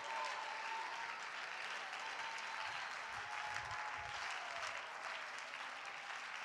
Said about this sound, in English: Come on, clap your hands unto the Lord and thank Him.